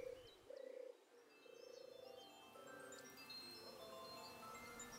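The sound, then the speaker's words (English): A small dove, only a little larger than a blackbird, with a pink-blushed grey breast, black markings on its neck and brown and black patterned wings, gives a soft, purring, telephone-like coo in several drawn-out, steady phrases, while smaller birds chirp and twitter faintly in the background. “You might notice it by its gentle telephone-like purring coo.”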